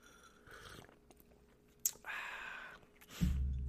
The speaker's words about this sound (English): I think it's time for the first sip of coffee.